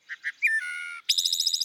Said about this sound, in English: They're just using the left and right sides of the syrinx independently. So this is a wood thrush, and you can hear how it's actually singing two notes at the exact same time.